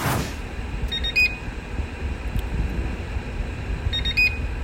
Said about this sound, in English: And this comes about because I believe that my microwave makes the most annoying sound in the world, which is this one.